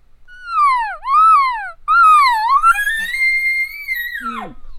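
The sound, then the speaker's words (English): A voice imitates a bull elk's cow call: two nasal, falling mews, then a longer wavering mew that rises and ends in a sharp downward whine, loud and alone. “Some bulls will come in and they'll cow call first.”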